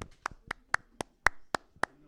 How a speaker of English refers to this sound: After taking first spot at regionals, cheer went on to play second overall. So let's give them a round of applause for getting second.